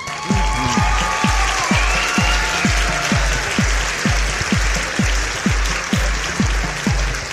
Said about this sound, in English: Yes. Clap for us. Again. One more time. There we go. Louder. I can't hear you.